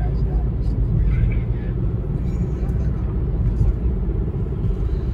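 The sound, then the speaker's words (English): Heavy trucks of a trucker convoy rumble past in a steady, continuous line on Interstate 70 near Cambridge, Ohio, as they pull off to park for the night, a deep engine drone and road noise that stays loud throughout without breaks. “Now, here's another video that'll give you some idea of how many trucks were in it.”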